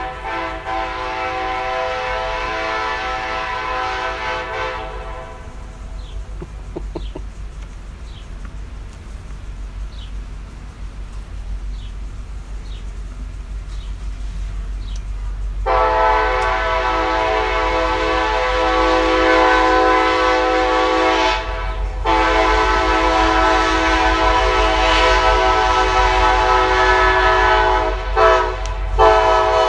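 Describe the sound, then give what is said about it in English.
A loud, sustained train horn blares in long blasts with a brief gap between them, over a steady low rumble of a passing train, with a few faint chirps in the pause. “We'll take a break while the horn goes.”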